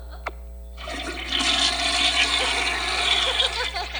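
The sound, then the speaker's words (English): A toilet flush sound effect: a small click of the handle, then a loud rush of swirling water that swells and keeps gurgling steadily for several seconds. “Flush the bad ones.”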